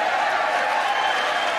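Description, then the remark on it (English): Steady, dense applause from one side of the house, Mitt Romney's side, many hands clapping together without a clear rhythm, with some crowd murmur mixed in and no break for the whole moment. “That was the other side of the house of Mitt Romney clapping.”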